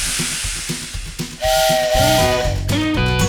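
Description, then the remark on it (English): A steam train chuffs in a steady rhythm, then its whistle sounds a loud, sustained blast for nearly two seconds, with a deep, rich tone riding over the hissing engine. “Hear my whistle blow.”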